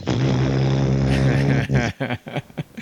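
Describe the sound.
A person makes a steady, droning airplane engine noise with their voice for nearly two seconds, loud, then breaks off into a few short voiced bursts, with their head in the cockpit of the YX aircraft.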